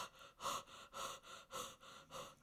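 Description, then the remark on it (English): A person imitates a Saint Bernard's panting with about five slow, heavy, breathy huffs in a steady rhythm, fairly loud, with no talking. “And then what about like a Saint Bernard?”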